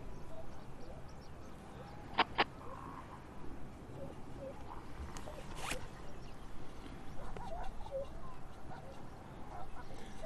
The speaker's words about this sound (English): I'm in Godthul. Got some South Georgia pipits, some fur seals, some elephant seals. It's all going down nice.